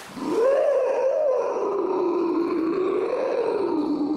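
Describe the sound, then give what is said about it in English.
A giant beaver emerging from the water hisses and growls in one long, loud rumble that wavers up and down in pitch for several seconds, with a raspy edge and no voices around it. “From the back as it hisses and growls.”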